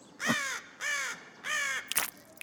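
Three loud, harsh caws from a bird overhead in steady succession, each drawn out and raspy, followed by a brief sharp rustle or tap. No talking, just the cawing.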